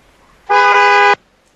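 A single loud car horn blast, held steady for a little over half a second with a bright, buzzy tone, then cutting off abruptly into near silence.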